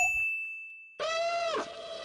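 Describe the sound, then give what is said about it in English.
A bright quiz-bell ding, introducing a sample trivia question about films, rings out and slowly fades. A louder, buzzy electronic tone with rich overtones follows, sliding briefly downward in pitch. No one speaks. “Ding, ding, ding, ding, ding.”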